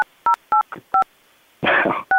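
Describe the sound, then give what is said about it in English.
A rapid series of short, clear dual-tone telephone keypad beeps as a phone call is dialed, evenly spaced, broken briefly by a burst of rustling noise before one final beep. No one speaks. “We're calling. Right. It's dialing.”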